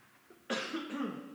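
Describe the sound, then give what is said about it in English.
A single harsh cough from a speaker giving a talk bursts out abruptly after a brief quiet moment, fairly loud, with a rough, breathy tail that trails off without any talking. “You're going to have to excuse me, I cough.”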